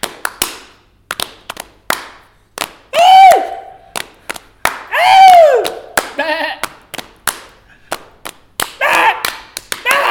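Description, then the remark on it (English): A quick, steady pattern of hand claps, slaps and cup taps on a table performing the cup song from Pitch Perfect, crisp, with a couple of swooping vocal sounds between the beats. “How about whilst we wait, we do that cup song from Pitch Perfect.”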